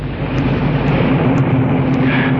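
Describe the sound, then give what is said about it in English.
A car engine hums and rumbles steadily as the car approaches and drives into a garage, a low droning motor sound at a fairly constant, fairly loud level throughout, with no voices. “He was halfway down when he heard the car approach.”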